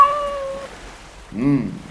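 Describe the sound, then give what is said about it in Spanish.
A cat meows twice: a higher, fading cry trails off early, then after a short pause comes a fuller, rising-and-falling meow, fairly loud. “¡Continúe, gatito!”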